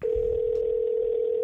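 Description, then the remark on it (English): A telephone ringing tone heard while placing a call sounds as a single steady electronic hum, holding unbroken at an even, moderate level for the whole moment, with no voices or other sounds. “So I decided to give him a call.”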